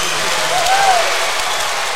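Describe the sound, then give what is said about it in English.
A large crowd at an NBL basketball game cheers in a steady, loud roar for about two seconds after a made free throw, with a brief rising-and-falling whistle-like tone cutting through the middle. “You can hear that from the crowd. You'll get their reaction every time. They whip themselves into a frenzy and then bring themselves down.”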